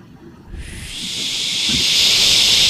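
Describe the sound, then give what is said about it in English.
A voice imitates the whooshing sound of a curtain of rain approaching across a yard: a steady breathy whoosh of hiss that begins abruptly and swells gradually louder over a couple of seconds, with no words spoken. “Like this, like whooshing sound.”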